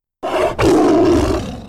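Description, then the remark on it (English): A loud animal roar bursts out after a brief silence, a short first blast followed by a longer, rumbling growl that fades slightly at the end. “let loose with a roar that must have been heard from one end of the mothership to the other.”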